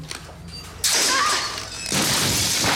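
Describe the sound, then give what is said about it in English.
A woman falls from a ladder onto a glass case: a sudden loud crash of breaking glass, followed by a wash of scattering shards and a second burst of debris a moment later. “She falls, her entire side is an incredible fall, too, from a filmmaking standpoint, and just falls right onto a glass case on her side.”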